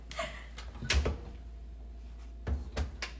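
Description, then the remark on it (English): An oven door opens with a heavy clunk and a brief rattle as a pumpkin pecan pie is put in to bake, followed after a short pause by two sharp metallic clanks as it shuts, with no talking. “Let me put it in the oven.”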